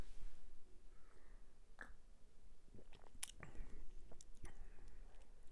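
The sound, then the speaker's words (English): Quiet mouth sounds of someone sipping a carbonated, pale honey beer: a few soft slurps, wet clicks and a swallow, with faint fizzing noise and no talking. “So let's give it a sip.”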